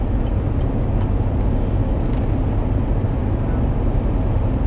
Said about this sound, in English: We're just driving in this Tesla X with autopilot. We're not really driving. We're not driving, we're sitting. The car is driving. That's what autopilot is,